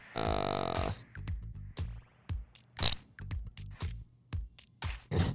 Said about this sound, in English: That was pretty good fart sound. Yeah, it was. Actually, it really was.